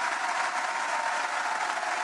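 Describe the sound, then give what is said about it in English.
Steady, dense applause from a live studio audience in the town of Byer giving themselves a hand, many hands clapping at once in a continuous bright rush with no pauses or voices over it. “Byer, give yourselves a hand.”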